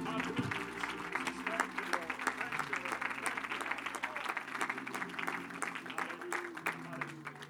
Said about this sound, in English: Would you give the Lord one more hand clap of praise?